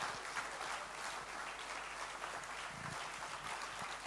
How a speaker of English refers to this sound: Clapping tonight. Don't stop the hand clap too quickly.